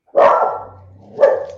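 A dog lets out two sharp barks about a second apart, fairly loud and close, with no voices around them.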